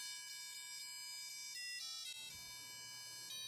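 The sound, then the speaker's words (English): A small speaker driven by an Arduino, set off by pressing a push button, plays "Jingle Bells" in steady beeping notes with a harmonic-rich, buzzy tone, loud and alone without any talking. “So that's just coming through as, you know, jingle bells.”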